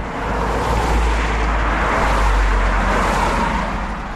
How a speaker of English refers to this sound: Cars speed by the road right next to Walden Pond.